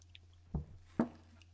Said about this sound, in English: Oh, man. Nice sip of water there. Gotta hydrate.